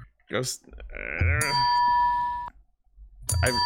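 A bright quiz-buzzer ding rings out once as a contestant buzzes in during a Super Sentai trivia game, its steady high tones sustaining for about a second before cutting off, with brief bits of talk just before and after.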